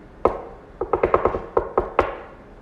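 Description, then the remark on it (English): Knocking on a door, around ten sharp, hollow raps: a single knock, a quick flurry, then a few spaced knocks. Fairly loud, with no voices. “Let's go knock on this door.”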